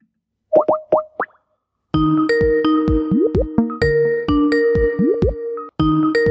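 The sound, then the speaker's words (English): An online call ringtone rings loudly and alone, a few bubbly popping notes followed by a repeating electronic melody of plopping tones over sustained chimes, with no one answering or speaking. “It was ringing on everything apart from on my computer for some reason.”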